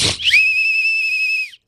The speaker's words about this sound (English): Here, I'll blow my whistle.